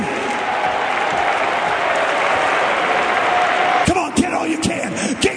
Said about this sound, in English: Stand to your feet and clap your hand. In this hour, God is doing a God thing.